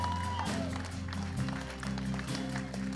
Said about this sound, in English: Come on, church, stand to your feet. Come on, give God a hand clap of praise. Come on, somebody lift up a shout of faith in this place.